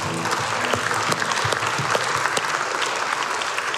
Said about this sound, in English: Amen. Would you give God a hand clap of praise?